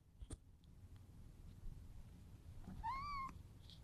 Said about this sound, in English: I had to walk towards her to sort of get her to meow, but that's Luna. Luna says hello.